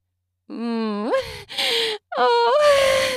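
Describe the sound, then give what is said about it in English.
A woman moans loudly in rising, wavering tones, broken by two breathy gasps. Three drawn-out vocal bursts in quick succession, with no words spoken. “Moaning the whole time.”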